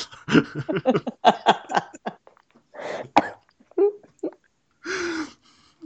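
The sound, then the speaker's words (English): A loud coughing fit: a rapid cluster of harsh hacking bursts, then a few heavier, spaced-out coughs with brief pauses between them, partly laugh-like. “God, I just had a huge coughing fit thinking about that.”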